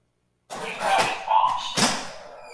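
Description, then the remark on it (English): A motorized rear door of a home opens on a spoken command to a voice recognition system called Josh, with a mechanical whir and a few sharp clunks and rattles over about two seconds, fairly loud, with no one speaking. “And as you can hear, not only does it follow my commands, but working as a conduit, it just opened my rear door and would allow me to go outside.”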